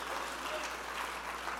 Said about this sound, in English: Somebody clap your hands and rejoice. Hallelujah. Thank you, Jesus.